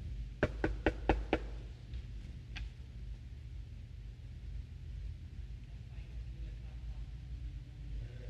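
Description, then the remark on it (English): A quick series of five sharp knocks on a door, followed by one more isolated knock, heard over a steady low rumble of background noise. “Or somebody knocks on your door.”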